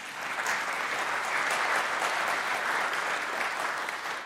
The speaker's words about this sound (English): do I hear a clap? That'd be great.